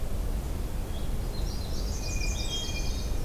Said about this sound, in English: Hey, there's a magnolia here. That's good. They kind of remind me of an abbreviated hooded warbler.